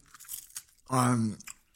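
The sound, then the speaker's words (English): Crisp crunching and chewing of thin, brittle, lightly salted snack strips from a box, a few quick crackly bites, then a short voiced murmur before more faint crunches. “38 of these strips just to even get nourishment”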